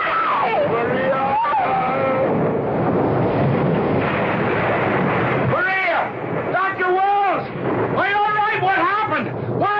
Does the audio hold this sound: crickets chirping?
no